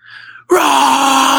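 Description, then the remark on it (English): A voice imitates a woman who grabbed the microphone at a live music show between sets and started yelling: after a brief, quiet breathy moment, a sudden loud, sustained, strained yell bursts out and holds steady to the end. “When she grabbed the microphone, bro, she just starts yelling.”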